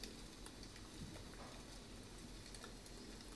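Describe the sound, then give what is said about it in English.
Steady, soft rain hisses and patters throughout, with scattered faint drop ticks over a continuous wash of noise; quiet and even, with no voices. “I wonder if the rain gets harder.”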